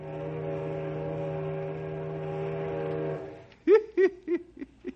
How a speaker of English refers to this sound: Our story today concerns the small riverboats that take tourists from Knotty Pine up to Mirror Lake and the King's Islands. Say, I hear the whistle of a riverboat right now.